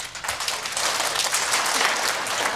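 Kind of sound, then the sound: crowd, group clapping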